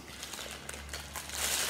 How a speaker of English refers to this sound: There's no embarrassment. It's just open it up, rip the paper off, and see what's inside.